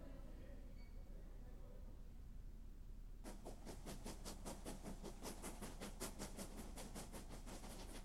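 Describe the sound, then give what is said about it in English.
A low, steady rumble gives way to a train carriage riding along the rails, its rapid rhythmic clatter and hiss growing loud and continuing steadily to the end. “I boarded the train.”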